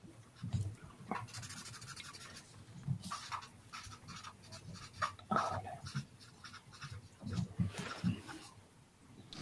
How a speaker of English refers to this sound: Just trying to move everybody's score to my second piece of paper now. Pardon me. Because I've run out of space.